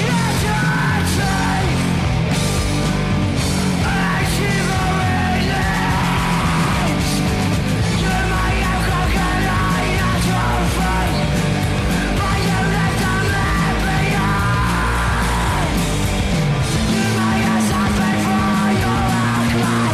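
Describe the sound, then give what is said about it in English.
Loud crust punk music plays continuously, with heavily distorted guitars and pounding drums under harsh, shouted vocals, dense and aggressive from start to finish. “…, have a little listen to this so you know where they're coming from”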